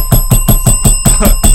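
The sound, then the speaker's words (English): A bell sound effect rings rapidly and loudly, struck about eight times in quick even succession while a bright metallic tone sustains throughout, with no voices. “Like a gong thing every time you guys like.”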